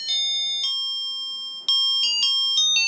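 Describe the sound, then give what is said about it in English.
An electronic musical doorbell chime plays a short melody of bright, ringing tones, the notes sustaining into one another, then a quicker run of several notes. It is clear, with no voices. “you ought to be a doorbell salesman.”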